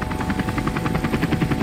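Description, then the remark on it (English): A helicopter sound effect for Marine One, a Black Hawk or Sea King helicopter carrying 11 to 14 people, boarded by the US president on the White House south lawn: rotor beats loudly and steadily, a rapid thudding chop over a broad engine roar, with no voices present. “When Joe Biden leaves the Oval Office, he steps out onto the south lawn of the White House and he boards Marine One, either a Black Hawk or a Sea King helicopter with the capacity to carry 11 to 14 people.”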